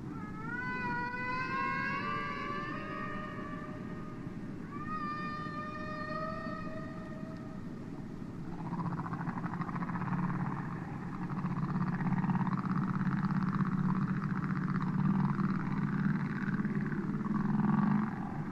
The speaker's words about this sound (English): Much underwater sound is in fact very beautiful, and nothing illustrates this better than the singing of the humpback whale.